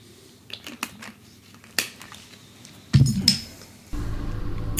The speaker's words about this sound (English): I'm going to take a swig of liquid before I do this.